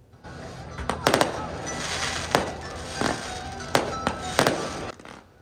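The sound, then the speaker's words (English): Fireworks bang and crackle in a steady series of sharp bursts, some doubled, echoing over a continuous low rumble, with no voices; fireworks lighting up the night sky over Belcarra Bay during a Christmas boat light show. “Fireworks lit up the night sky in Belcarra Bay as part of the Santa Ships light show last night.”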